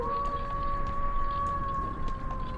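A long, drawn-out wolf howl holds a steady, slightly wavering pitch for several seconds over a low, rumbling background, with no one speaking.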